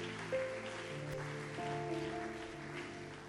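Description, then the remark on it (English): An audience applauds, a steady, dense patter of many hands clapping at once, with sustained organ-like chords holding underneath throughout. “Put your hands together for them.”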